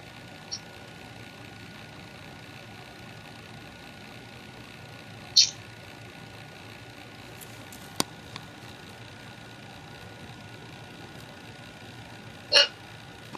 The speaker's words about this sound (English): I got the hiccups. Well, you poor thing. You poor thing.